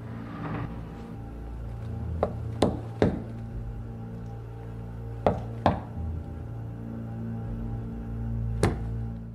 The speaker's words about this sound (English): Now, that's not the knock that she says, right? That's the wrong knock she says on purpose. The knock that she tells the Special Forces guy is two knocks, single knock. That is Morse code for Die.